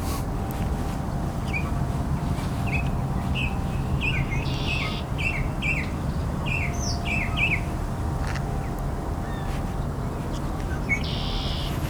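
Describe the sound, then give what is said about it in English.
A mockingbird sings a varied series of short chirps and whistled phrases, mimicking other birds such as barn swallow and cardinal, shifting between different call types, heard outdoors over a steady low background rumble with no talking. “Mockingbirds pretend to be a lot of different birds. Barn swallow, cardinal, all kinds of other birds.”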